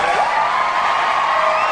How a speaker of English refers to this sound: And applause. So we tacked it on there.